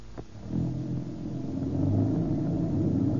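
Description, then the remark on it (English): A car engine starts up and settles into a steady, low rumble as the vehicle pulls away, sustained with no voices over it. “Boy, what a difference. Some car, all right.”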